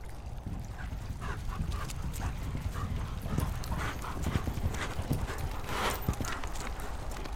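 Many horses' hooves clatter in a dense, continuous clip-clop as more than a dozen riders arrive at a river's bank at a steady pace, with a faint dog-like whimper or bark mixed in.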